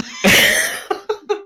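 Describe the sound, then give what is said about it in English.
A voice imitates someone choking on a chicken bone in the throat: one long, harsh, rasping hack, then three quick, shorter coughs with a strained, voiced edge, fading out at the end. “It's a chicken bone in the throat.”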